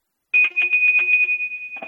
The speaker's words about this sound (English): Then if you think about the difference between steel and brass, I have, again, that same bell I just rang that's a steel bell and a similar size bell made out of brass.